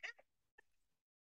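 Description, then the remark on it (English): A person imitates the alarm call cats make when they see a bug, with two short, bright chirping bursts: the first sharp and louder, the second softer and trailing away into silence. “They sound a little alarm.”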